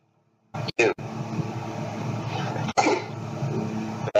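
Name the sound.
sneeze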